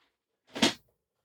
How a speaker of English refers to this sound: Because as I sit here talking, I start to slouch. Slowly start sliding down my chair. And this chair is kind of cheap and has a plastic back on it. So whenever I move, the whole back flexes just like.